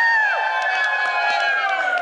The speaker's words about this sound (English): Yay, thanks for clapping, I was worried.